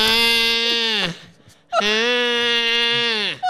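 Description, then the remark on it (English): A voice imitates a baby's cry with a sheep-like bleat: two long, loud, wavering wails, each trailing downward at the end, separated by a brief pause. No other talking. “Baby, do our baby sound like a sheep?”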